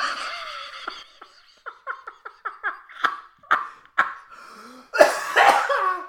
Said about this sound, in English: Made him cough.